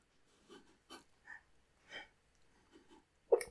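A series of about seven short, sharp hiccups at uneven intervals, mostly soft, with the final one noticeably louder. No one talks.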